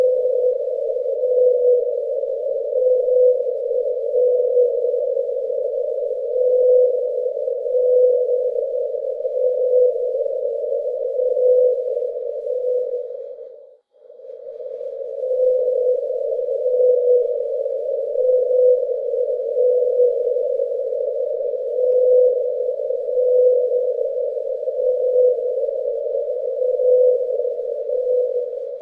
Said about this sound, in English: And this lonely son of a bitches wandered around underwater. Anyway, so this is the world's loneliest whale.